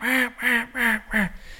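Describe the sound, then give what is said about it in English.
A duck call blown hard, giving four loud, raspy, aggressive boss-hen quacks in a quick, even rhythm, with no talking. “You can, you know, do a loud boss hen, a real aggressive boss hen.”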